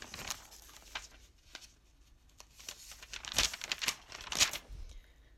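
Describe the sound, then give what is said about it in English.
Paper pages rustle and crinkle as they are handled and turned, including a section of pages clipped together with clips like binder clips. A series of short, dry bursts that grow busier and louder toward the end, with no talking. “Here's a whole section that's clipped off, like with, I don't know the word for it.”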